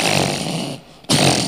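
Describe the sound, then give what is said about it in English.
A voice imitates loud snoring: a harsh, rattling rasp that drones on, breaks off for a moment, then surges back just as loud. No words are spoken. “In the middle of the night, you snoring.”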